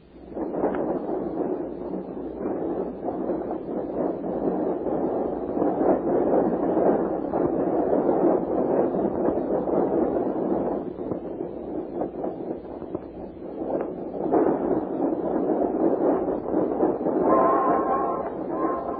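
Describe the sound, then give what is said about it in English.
A train passing by, a continuous heavy rumbling roar with clattering bursts that holds steady for about twenty seconds, easing briefly partway through before building again, with no voices. “How was a train passing by?”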